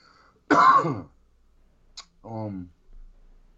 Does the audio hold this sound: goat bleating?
no